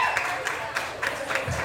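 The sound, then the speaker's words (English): A crowd at a pub in Liverpool applauds the Liverpool Swimming and Diving team steadily, the dense patter of many hands filling the space at moderate loudness for a brief stretch, with a faint murmur of voices underneath. “Can you give them a round of applause first and foremost before I get started?”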